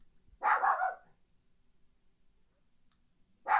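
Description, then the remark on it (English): A female pet dog named Tequila barks in two loud bursts, one near the start and another cut off at the very end, with a quiet pause between them and no talking. “My dog is just on the barking match today. Like, she just keeps barking.”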